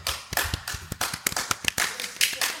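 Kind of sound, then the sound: crowd, audience applause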